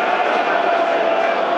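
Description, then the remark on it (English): A large football crowd in South Bermondsey applauds and roars in a steady, dense wash of sound, loud and continuous throughout with no individual voices standing out, 65 minutes into a match on a cold, wet night in incessant rain, after Jed Wallace tracks back. “You can hear the applause, 65 minutes.”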